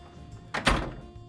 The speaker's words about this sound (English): I leave, shutting the door behind me.